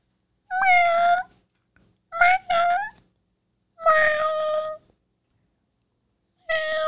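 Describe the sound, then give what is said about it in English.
A person imitates a cat with four loud meows, each a drawn-out wavering call separated by short silences, the second broken into two quick yowls. “Here's your prompt. Cat.”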